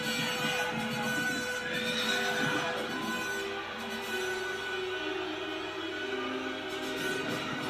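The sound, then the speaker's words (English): A horse neighs and whinnies loudly, its shrill, wavering cries running over a dense, noisy background with no talking. “Taken out by a horse.”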